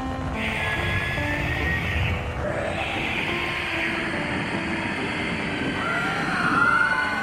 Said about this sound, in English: Then we heard it. Growls and shrieks in the woods all over, on every side.